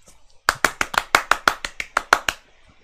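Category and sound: sound effect, clapping sound effect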